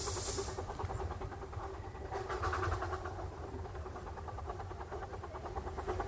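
A steam train lets out a short hiss of steam, then begins pulling away with a steady rhythmic chugging over a low rumbling engine, fairly loud.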